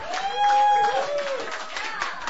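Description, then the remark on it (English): An audience at Halbert's Sunday Night Open Mic, recorded at Halbert's Coffee House, applauds at the end of the evening with a steady wash of dense clapping, while a few voices whoop and cheer over it throughout the short burst. “Give yourselves a big hand while you're clapping.”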